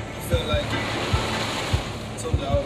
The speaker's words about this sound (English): You hear the rain? We're in the middle of a hurricane.